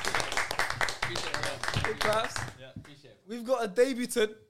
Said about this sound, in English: Appreciate it. Claps.